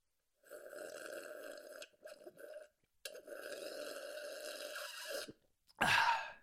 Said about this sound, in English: Oh, no, I read that sipping like that's better. Is it? No. God. Oh, yeah. If you're not making the most noise while sipping water, then you're going to die 10 years earlier than everyone else.